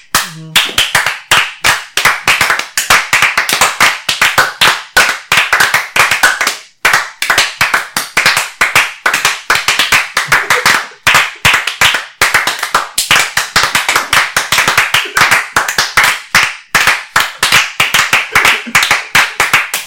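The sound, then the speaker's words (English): Steady, vigorous applause from a group, a dense stream of loud sharp hand claps sustained for the full length with only brief dips, no voices over it. “that was 30% more clapping than you'd give to a man just for the reparation purposes.”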